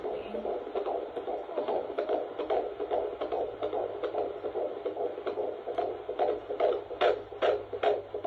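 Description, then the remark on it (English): A baby's fast, steady whooshing heartbeat pulses through a midwife's Doppler monitor, each beat a rhythmic swish over a low electronic hum, continuous and fairly loud with no talking. “And then she gets to baby, and baby's like... It almost sounds like wind, doesn't what it?”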